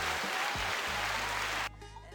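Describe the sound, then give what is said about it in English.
A steady, dense burst of clapping like a round of applause, loud and continuous for under two seconds before it drops off abruptly into a quieter hum. “I gave you a round of applause, my guy.”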